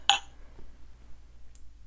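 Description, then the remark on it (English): A single bright clink of glasses touching in a toast, sharp, ringing briefly before fading into quiet, with a faint softer tick shortly after. “Yay, cheers.”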